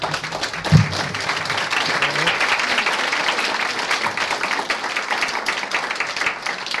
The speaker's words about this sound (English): All right, let's give all of the storytellers a round of applause again.